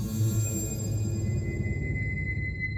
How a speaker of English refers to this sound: And we don't know how that sentence ends because this huge burst of static drowns out whatever he was going to say.